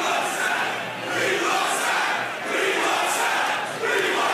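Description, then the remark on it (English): A large crowd of New York Jets fans at the football draft chants loudly and insistently, wanting the team to draft Warren Sapp. Voices rise and fall in steady waves with a brief dip between swells, the roar sustained throughout. “And the fans are letting you know which way they want to go.”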